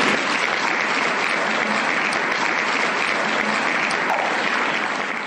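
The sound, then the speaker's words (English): Sustained audience applause for a speaker, a dense steady wash of many hands clapping at high volume for about five seconds, with no voices standing out above it. “Okay, everybody, let's give our speaker a round of applause one more time.”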